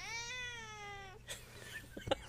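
A male domestic cat meows into a microphone, one long, steady meow lasting about a second, followed by a few faint rustles and soft clicks against a quiet background.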